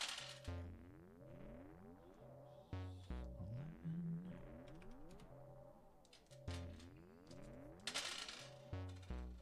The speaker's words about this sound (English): to roll a bunch of dice.